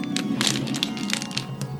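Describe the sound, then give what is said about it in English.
A plastic water bottle being crunched, giving a rapid, irregular run of sharp crackles and crinkling pops that carry on steadily for a couple of seconds with no talking. “Here, eat this water bottle.”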